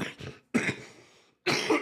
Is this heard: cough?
yes